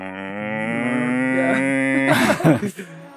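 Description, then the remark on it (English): A drawn-out, moo-like sound effect, like time snapping back to normal speed: a loud, steady, buzzy tone holds for about two seconds, then breaks into a brief noisy, crackling burst. “That's time, that returning, is time to normal. Returning to normal.”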